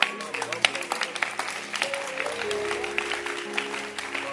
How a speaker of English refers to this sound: I like your hand clap.